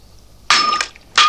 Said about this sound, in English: snaps the stem of her wine glass in her hands, cutting herself in the process.